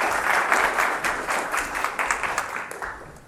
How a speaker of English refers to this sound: Feel free to drop that now and to go back to your seats. If we give them a round of applause for their helpfulness.